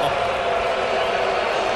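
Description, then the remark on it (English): A loud baseball stadium crowd at a Blue Jays–Yankees game reacts as Judge is intentionally walked, a dense, steady roar of massed voices that holds at an even level for about two seconds, with no single voice standing out. “Jays did wind up beating the Yankees, but listen to this crowd. And Judge is intentionally walked.”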